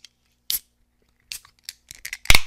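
A can of Golden Road Brewing summer beer is cracked open: several small, sharp metallic clicks and scrapes as the tab is worked, then a loud, sudden pop with a brief fizzing hiss. No one speaks.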